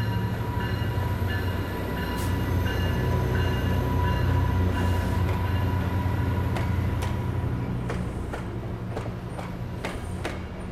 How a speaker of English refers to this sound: I'm here on track 11 at Los Angeles Station, waiting for the Southwest Chief to come in. All around me, Metrolink trains are going in various directions.